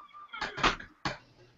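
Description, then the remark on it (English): A door creaks open with a thin, drawn-out squeal, then a couple of clunks and rattles from the handle and frame, fairly loud, with no voices. “That was a creepy door.”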